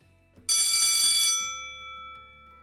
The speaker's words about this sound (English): God, that bell is way louder on earbuds than it is on headphones.